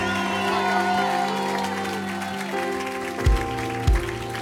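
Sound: audience clapping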